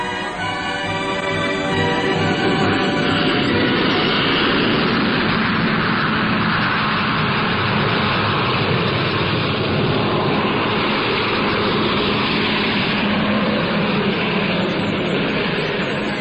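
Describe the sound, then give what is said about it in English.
VC-10 jet airliner engines roar steadily for the whole stretch, a loud, dense rushing rumble with a faint high whine in the opening seconds and no voices. “Every pilot who has ever flown a VC-10 is ecstatic in praise not only of the engines”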